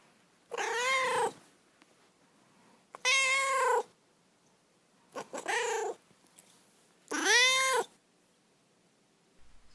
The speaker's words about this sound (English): All right, now we will move on to Duarte's Corner, where my cat Duarte has a designated space to share his opinions on the book.